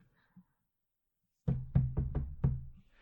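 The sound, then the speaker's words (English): Five crisp knocks rap out the familiar shave-and-a-haircut rhythm on a door, fairly loud after a quiet pause, with the closing two-beat answer left unplayed. “Is somebody going to give me 2 bits or not?”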